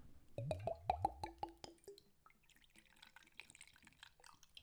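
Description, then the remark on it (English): A rapid series of about nine hollow glugs as clear liquid pours out of a very heavy twist-off bottle, each gulp loud and evenly spaced, then trailing off into a softer, fizzy splashing. “I'm gonna be strong and pour this.”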